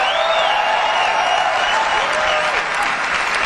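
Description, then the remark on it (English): A large audience at Apple's product launch of a new phone bursts into loud, sustained applause with cheering and whoops, a dense wash of clapping that holds steady throughout without any speaking voice on top. “The crowd goes wild, right?”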